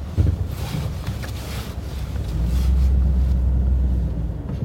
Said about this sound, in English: It's weird parking my truck here when no one else is here. But we'll see.